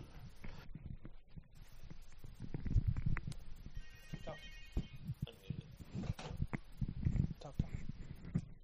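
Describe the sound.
A red police phone rings briefly in the middle, a short burst of electronic trilling tones, while muffled voices and background noise continue around it.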